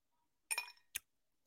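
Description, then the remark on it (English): Ice cubes drop into a glass of spirit during a tasting with a bright clinking clatter, followed by a second sharp clink a moment later. “But I'm going to bring it to the ice pour.”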